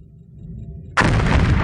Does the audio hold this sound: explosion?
yes